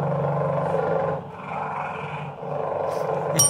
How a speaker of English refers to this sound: Penguin. No, it's a cheetah.